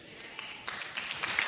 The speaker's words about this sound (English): And it's an applause line. False doctrine, applause line. Yeah, people are clapping at the false doctrine. That's great.